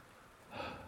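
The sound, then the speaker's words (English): A soft, steady hiss of rain falling, swelling a little louder about halfway through the brief moment, with no voices present. “It's raining. It wasn't supposed to rain, but there it is.”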